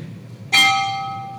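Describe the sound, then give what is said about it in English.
A single bell strike rings out clearly, its bright metallic tone lingering and slowly fading over a low background rumble, with no voices. “You ring the bell because it's telling you”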